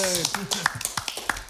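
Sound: round of applause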